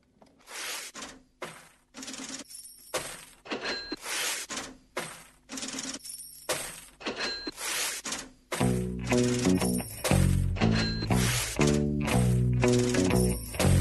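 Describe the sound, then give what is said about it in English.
Coins of loose change drop and clink in a rapid series of bright, metallic bursts, loud, on the radio show Everyday Tech, before a steady musical bed swells in beneath the jingling for the second half. “We're back on Everyday Tech, and that's right, it's money time. You hear that? Change coins.”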